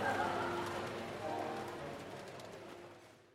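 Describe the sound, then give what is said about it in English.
Steady rain patters beneath a low, continuous hum of indoor café ambience with faint murmuring voices and occasional clinks, fading gently toward the end. “You're listening to Rainy Day Coffee Shop.”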